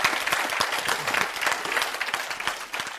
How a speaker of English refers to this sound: It is Christ and Christ alone. I'll wait while you clap.